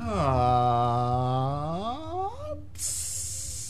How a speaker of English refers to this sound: Let it sizzle in your frying pan.